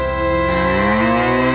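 A single loud, sustained cow moo in an advertisement for EaseOff, a rich droning low call that holds steady for over a second with no talking around it.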